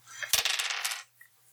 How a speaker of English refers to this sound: Roll 2d6.